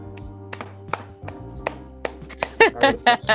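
Scattered hand claps from what sounds like one person, sharp and irregular at first, then crowding into a quicker, louder flurry of claps toward the end.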